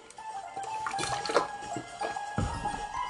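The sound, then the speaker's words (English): Quiet slurping and swallowing sounds as someone sips water, with small wet clicks and gulps over about three seconds and no talking. “excuse me. Water.”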